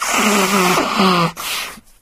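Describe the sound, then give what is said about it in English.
Someone blows their nose with a loud, buzzy honk lasting over a second, then a shorter, breathy snuffle before the sound trails off. “I've got to blow my nose.”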